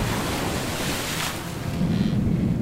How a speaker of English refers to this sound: We're starting this episode in 1839 with a ship crashing through the waves of Bass Strait en route for Melbourne from Tasmania. Or as it were in 1839, Port Phillip from Van Diemen's Land.